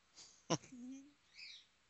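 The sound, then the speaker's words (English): A pet bird gives a few faint, short high chirps, spaced apart, with a sharp click in between and a brief low murmur-like tone underneath. “I think we only could hear it on the show. He's always yapping. I want my bird.”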